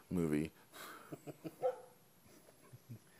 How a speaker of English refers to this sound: And we have a special guest here today as well, which is the dog across the street barking.